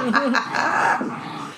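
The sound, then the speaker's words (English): Dogs growling and yipping playfully, a continuous rough tussle of snarls and whines, fairly loud with no pauses. “But so all the dogs are like, what's going on? What are they playing?”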